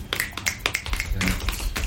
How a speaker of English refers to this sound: Round of applause. Well, maybe not a round of applause because it'll be snaps. Oh. Golf claps.